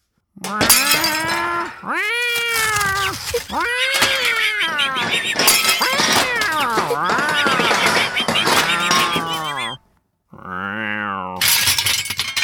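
A cat yowls and screeches in rising, wavering cries as it leaps onto a table and swings at mice, loud, while glass and dishes crash and shatter around it. The commotion runs almost nonstop before a brief pause.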